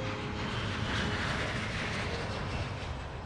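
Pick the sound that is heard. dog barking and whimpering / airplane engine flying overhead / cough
airplane engine flying overhead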